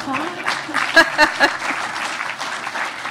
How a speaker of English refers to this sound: Applause, somebody?